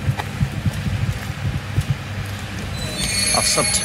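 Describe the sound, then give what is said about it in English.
A big locomotive at the head of a four-coach train stands idling at a station platform after rain, with a deep, steady throbbing rumble, station noise and faint voices around it, and a thin high-pitched whine rising toward the end. “Let's spin round and walk the length of the train. Yeah, so there's the big loco.”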